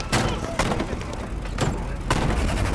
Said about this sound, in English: When all of a sudden, shots tore through their real bedroom. The gunfire lasted a while.